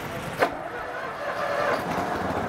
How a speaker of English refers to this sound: We're gonna check out a Uni Tractor baler rig. Now, this thing may have been slow, but it got the job done.